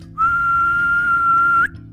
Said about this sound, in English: And then the final whistle was blown.